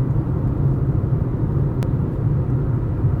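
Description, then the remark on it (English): Steady low rumble of a car cabin while driving, with a continuous engine drone and road noise filling the space, and one brief faint click partway through. No one speaks. “I mean, obviously I'm in the car, so it'd be a little weird, but you could.”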